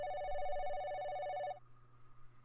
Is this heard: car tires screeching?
no